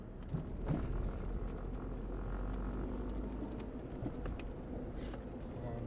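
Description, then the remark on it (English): A steady, low rumble of traffic going by on a town high street lined with shops, continuous, with scattered mechanical clicks and rattles mixed into the hum. “Traffic.”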